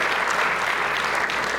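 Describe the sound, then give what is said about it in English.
Sustained applause from an audience clapping for a young man, a dense, steady wash of many hands clapping at once, loud and even throughout with no individual claps standing out. “So, did you want to clap for him? I will let you clap for him.”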